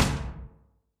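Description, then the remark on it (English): A single heavy bang of an unlatched back door banging in the wind, a loud low thud with a short echoing decay that fades within about half a second, with no voices. “Sounded like a door banging in the wind.”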